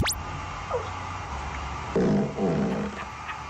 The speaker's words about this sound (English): Yes, that fart came from the bum of a, at the time, 6.5-month-old baby. We have not doctored that audio. No way. It is just phenomenal.